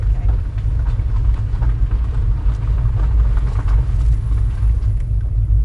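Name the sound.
car driving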